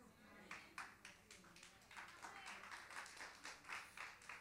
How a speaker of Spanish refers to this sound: Ese fue aplauso de golf. ¿Se ha ido alguna vez a jugar golf o ha visto? Qué bueno que no estoy aquí en un concurso del que más aplauso se lleve.